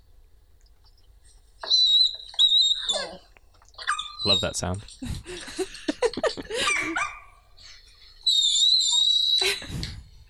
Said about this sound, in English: I think I found Artie chirping, so let me see if this is the one.